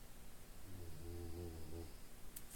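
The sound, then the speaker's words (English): A female dog snores softly, a single drawn-out, buzzing rumble of breath amid quiet. “Well, clearly my dog doesn't care.”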